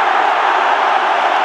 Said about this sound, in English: And the ground behind me erupts with joy as Dynamo Kiev have beaten their fierce rivals, Shakhtar Donetsk, 1-0.